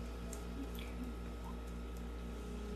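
A quiet, steady squishing of water being stirred in still water beside a boat, a soft continuous wet texture with no pauses, heard alone over a low background hum.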